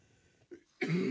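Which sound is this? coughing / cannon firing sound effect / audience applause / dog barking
coughing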